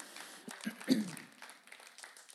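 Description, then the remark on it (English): An audience claps together in a steady, dense patter, applauding God, with a brief voice or shout rising out of the crowd partway through before the applause thins. “Why don't we applaud who our God is?”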